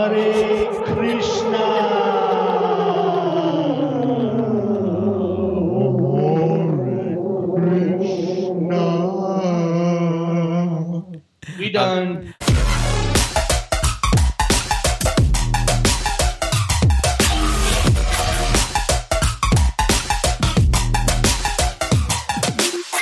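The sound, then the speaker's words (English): A voice chants the phrase "Hare Krishna" drenched in a tape-style space echo delay, repeats smearing and trailing off, before loud, dense rhythmic music abruptly takes over for the rest. “Say it one more time, with the echo, with the space echo.”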